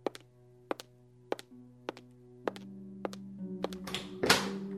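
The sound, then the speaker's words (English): Evenly paced footsteps, about eight sharp steps, walk across a room to the far door over a low, sustained musical drone, ending in a louder, rougher burst of noise. “Walk to the far door.”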